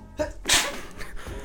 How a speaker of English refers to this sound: Even your sneeze got style sometimes. That's good ASMR for... Get closer, bro. Don't sneeze on the mic, though.